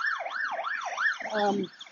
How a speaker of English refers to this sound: oh, here we got a fire truck now, another one.